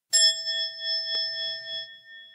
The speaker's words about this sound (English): And I'll end with one sound of a bell.